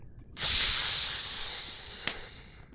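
A very hot, steaming piece of metal plunged into a bucket of oil to quench it gives a sudden loud hiss that starts sharply, holds steady with a bright sizzling texture, then slowly fades, with a brief crackle near the end and no voices.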